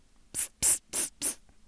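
A spray bottle is pumped four times in quick succession, each short hissing spritz sharp, with brief pauses between and no voices.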